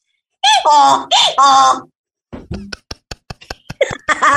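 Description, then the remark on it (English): A person loudly imitates a donkey's bray with a few strained, alternating hee-haw cries, then bursts into a quick run of breathy laughter. “I want you, because you're pretty good at animal sound effects, I would like for you to give me the sound effect of a donkey right now.”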